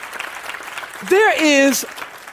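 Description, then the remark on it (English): An audience claps steadily in a dense, crackling patter, and a single voice calls out loudly over the applause partway through before the clapping carries on. “If you agree with that, clap your hands.”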